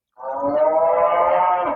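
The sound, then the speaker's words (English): A single long, loud moo from a neighbor's cow standing right outside a window, droning steadily for under two seconds with a rich, nasal tone and no other sounds around it. “one of the neighbor's cows moseyed on over right outside his window”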